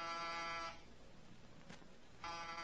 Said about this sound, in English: No answer to the door buzzer.